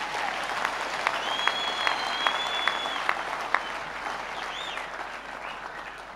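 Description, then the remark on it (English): A large crowd claps hands in a steady, dense wash of applause, with a few sharper rhythmic claps standing out early on and a faint whistle or cry riding above it. “Clap your hands, somebody, if you can.”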